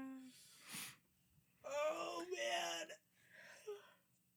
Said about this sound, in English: Sorry, I'm yawning. It's because I just yawned. Oh, you did? Mm-hmm. I didn't even see it.